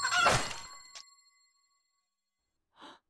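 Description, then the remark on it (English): Large blades of a trap slash through Derek, Hunter's chicken, cutting it into pieces in a loud, rushing metallic swipe that leaves a ringing tone, then a short second hit, silence, and a brief breathy burst. “For those who cannot see what just happened, as this is an audio drama, several large blades just sliced Derek, Hunter's chicken, into pieces.”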